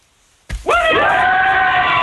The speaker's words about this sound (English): But I want the biggest shout out you can come up with. So round up the troops and give us a big cheer.